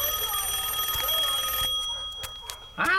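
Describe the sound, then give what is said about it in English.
A telephone rings with a steady, high-pitched electronic trill that holds for a second and a half, then breaks off into short clicks and a brief bright burst at the end, a call coming in during a TV show. “Oh, man, they always call right in the middle of my favorite show.”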